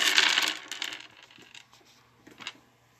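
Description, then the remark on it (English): Dice clatter onto a hard table, a loud initial rattle followed by a few lighter bounces and a final small clack as they settle, with no talking. “You know what that sound means? The dice sitting the table.”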